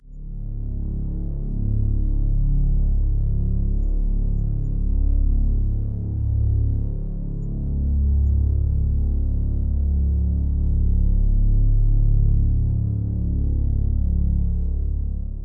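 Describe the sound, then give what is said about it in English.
A steady, droning low hum with deep rumbling tones that slowly swell and waver, sustained for the whole stretch with no voices, recreating how someone perceives a persistent hum. “What follows is one person's attempt to recreate how they perceive the hum.”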